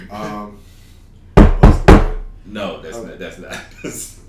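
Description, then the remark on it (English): Three loud, evenly spaced, heavy knocks on a door, landing between stretches of a person talking. “Let me shut the fuck up before they knock on the door. Knock on the door.”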